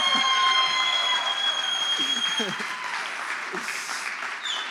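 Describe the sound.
A crowd applauds steadily, a dense wash of clapping hands that stays loud throughout, with a few scattered voices and whoops rising out of it.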